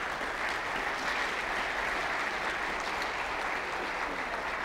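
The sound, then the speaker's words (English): An audience applauds steadily for several seconds, thanking people who shared their stories that morning, a dense wash of many hands clapping at an even, sustained level with no voices standing out. “Would you mind giving them a round of applause?”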